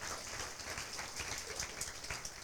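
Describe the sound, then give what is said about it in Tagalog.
A crowd of young people claps steadily for a couple of seconds in response to a call to applaud for those who love the Lord, a dense, continuous patter of many hands, with no voices over it. “Pwede bang pumalakpak ang nagmamahal sa Panginoon?”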